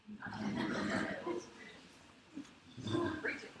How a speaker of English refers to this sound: Okay, tiger with a chain.